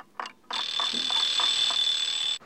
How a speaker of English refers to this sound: An alarm clock 1 metre away.